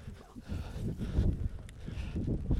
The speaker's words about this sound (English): It's very windy.